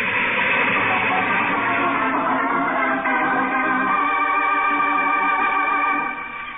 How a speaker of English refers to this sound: A train. There's a train coming. It's coming toward me. There's a headlight.